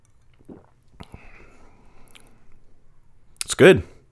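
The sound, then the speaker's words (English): A quiet sip from a glass of a sweet cocktail with ice and jalapeño: a faint clink of ice, soft slurping and mouth sounds, then a brief, louder voiced exhale of satisfaction. “And I'm going to go ahead and have a sip, tell you how it goes.”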